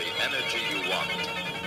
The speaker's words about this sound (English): Do you have another phone call? Yes, that's my ringtone for Dan Deacon.